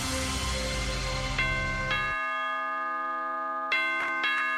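A doorbell chime rings out clearly with no one talking, its bright bell tones struck several times in an uneven pattern and left to ring and fade between strikes.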